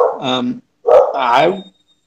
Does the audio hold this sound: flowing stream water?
no